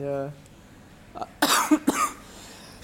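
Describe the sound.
A quick burst of harsh coughs, several in rapid succession with a brief throat-clearing start, after a moment of voice at the very beginning.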